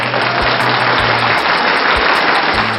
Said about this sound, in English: I might just stick in a little audio clip that I'll find on the internet of just random applause, just right there, just to give ourselves a pat on the back.